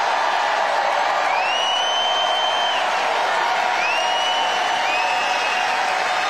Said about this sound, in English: Sounds like a pretty small, uninteractive crowd that he had going for him. Yeah, no, there was nobody there.